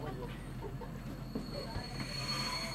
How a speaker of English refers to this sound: I'm on the train approaching the Roskilde Festival grounds.